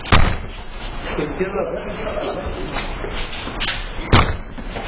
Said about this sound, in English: They're trying to kick the door in right here.